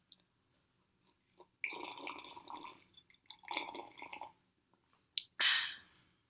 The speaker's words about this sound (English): Yeah, I'm going to drink some sparkling water while you watch it.